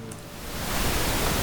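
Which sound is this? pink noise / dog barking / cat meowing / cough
pink noise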